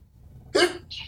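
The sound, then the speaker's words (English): A man gives a single quick sneeze, a sharp high-pitched burst followed by a brief breathy hiss, against a quiet low background hum. “for everyone that heard … sneeze”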